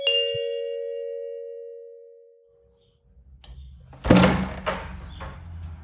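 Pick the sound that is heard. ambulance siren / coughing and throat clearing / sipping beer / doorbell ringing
doorbell ringing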